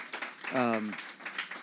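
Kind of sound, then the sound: crowd, audience applause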